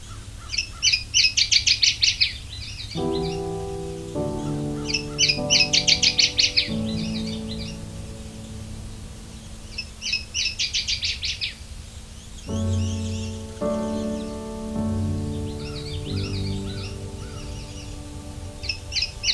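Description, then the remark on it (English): A warbler sings bright, rapid twittering phrases in repeated bursts every few seconds, clear, with soft sustained musical tones playing underneath during parts of the song. “Its song can be considered to be similar to the yellow warbler, and is described as sounding like twit, twit, twit, sweet, sweet, sweet, choo, choo, choo.”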